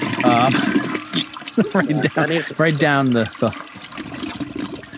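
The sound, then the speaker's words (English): A toilet flush, its watery rush and gurgle running for several seconds, with a voice making warbling, gurgling sounds over it as if imitating the flush. “It just sunk to the bottom of the toilet, and we're going to flush it.”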